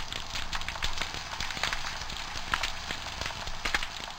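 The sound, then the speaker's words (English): Snapping shrimp crackle and pop underwater in a dense, continuous hiss of tiny sharp clicks, with a few louder snaps standing out irregularly, made by cavitation bubbles that shoot from their claws and collapse violently. No voices are heard. “They collapse and that's what makes a cracking and popping or the hissing sound from the shrimp.”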